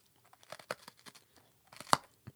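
Someone bites and chews a hard sesame seed ball, giving a run of sharp, dry crunches with a louder crack near the end and no talking.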